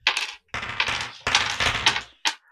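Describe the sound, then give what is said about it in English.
Six six-sided dice clatter in a cupped hand in four quick bursts of rattling clicks separated by brief pauses, with no talking. “Getting your dice out? Yeah, I'm holding 6 D6 as D20s in my hand.”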